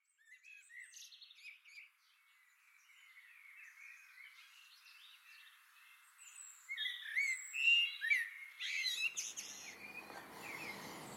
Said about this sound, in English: Okay, so I'm outside in my garden. I'm going to try and have a conversation with the blackbird. Which seems like an odd thing to do. It's going to be a rather one-way conversation.